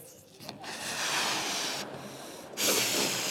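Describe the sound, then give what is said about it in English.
Air rushes out of a deflating balloon in a steady, breathy hiss lasting a few seconds, briefly thinning twice before surging again, fairly loud with no talking. “And just when you're about to go out like this balloon, encouragement comes in.”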